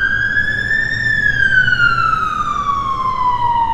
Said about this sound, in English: Welcome to the sounds of London as an ambulance goes screaming past me.